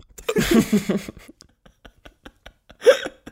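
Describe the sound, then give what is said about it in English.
A breathy, voiced gasping burst is followed by scattered faint clicks, then one sharp, abrupt hiccup with a quick high-pitched catch in the throat. “Every time I hiccup, it just makes me want to laugh too.”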